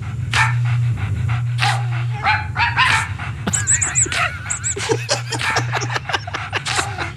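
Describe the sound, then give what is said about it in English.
A dog puffs out a quick, rhythmic run of huffs, chuffs and short yelping barks, almost like a beatbox pattern, over a steady low hum. “Then, speaking of beatboxing, apparently his dog can do it.”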